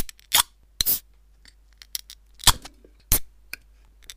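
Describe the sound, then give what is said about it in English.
Drink cans being cracked open: a handful of sharp metallic snaps and clicks spaced irregularly, with faint tapping between them and barely any fizz afterward. “Yeah, let's crack them open.”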